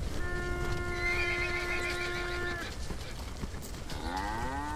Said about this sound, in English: The bellows of cattle and the whinnies of horses could be heard as the Egyptian war machine plowed through the Syrian desert.